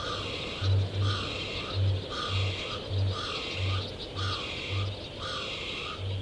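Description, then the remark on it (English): A kākāpō, a night parrot, calls: a steady series of deep, resonant low pulses about twice a second, with rising and falling high chirring sounds cycling over them. No talking, just the calls at moderate volume. “Voice of the Kākāpō 1: Kākāpō - night parrot”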